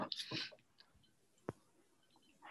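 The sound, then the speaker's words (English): Quiet sips and small wet mouth sounds as several people sip barrel bourbon whiskey, coming in short bursts, with one sharp click midway like a glass touching a surface, and no talking. “You can tell it's good because we're all quiet and just sipping and drinking.”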